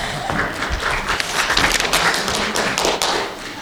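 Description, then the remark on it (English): A church audience applauds steadily for a few seconds after announcements, a dense wash of many hands clapping at once with scattered sharper claps standing out, fairly loud and sustained without any talking. “How about that? You got applause, buddy.”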